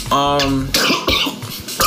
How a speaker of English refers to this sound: Oh my gosh. He's coughing.